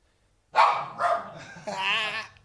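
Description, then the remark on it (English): Dogs bark in three loud bursts over about two seconds, the last one longer and drawn out into a yelping whine. “The dogs are having a proper party.”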